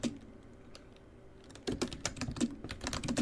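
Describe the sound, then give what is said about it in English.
Crisp keyboard typing in the name "Greg": a few sparse key taps at first, then a quick burst of rapid, clattering keystrokes in an uneven rhythm, with no voices. “Results after just typing in Greg.”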